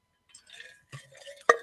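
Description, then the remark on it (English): A quick sip of water: soft slurping and a gulp, then a sharp clink as a glass is set down, with no talking. “Another thing I wanted to talk about, quick drink of water and then we'll get into it.”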